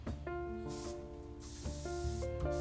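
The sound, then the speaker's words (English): An aerosol can sprays in steady hissing bursts as a father sprays down a couch, fairly loud, with a low background hum underneath and no one talking. “Sorry, my dad's spraying down my couch and whatnot. For breeze and whatnot.”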